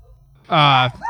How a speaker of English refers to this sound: My dog PG's making a cameo. And now Spenny's going to go crazy, too. You won't hear much of it.